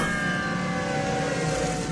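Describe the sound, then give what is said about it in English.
Sirens of fire brigade engines heading to a warehouse wail in a continuous, steady blare, layered with rumbling engine noise and holding the same loudness throughout, with no voices. “The fire engines are going to the warehouse.”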